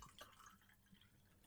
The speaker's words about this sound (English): I'm pouring more gin. Sorry.